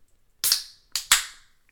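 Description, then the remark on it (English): A pint can of Black Pearl Oyster Milk Stout from Duck Rabbit Brewing cracking open: three sharp, hissing pops, the first with a long fizzy release, followed by two more in quick succession, each fading into a brief carbonated hiss. No voices. “So you could hear that release. It was definitely ready to be cracked.”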